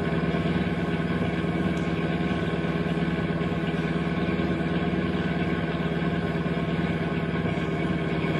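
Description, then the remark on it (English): A car engine runs with a steady droning hum as the car keeps moving and another car pulls alongside; the hum holds at an even level throughout, with no voices and no noticeable change in speed or pitch. “flash your tail light by pushing gently on the brake pedal. Don't stop the car.”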